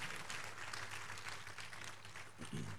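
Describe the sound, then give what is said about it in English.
A large crowd claps together in sustained, dense applause, a steady wash of many overlapping hand claps that fills the whole moment without letting up. “Where that clap can be stronger and better for Jesus.”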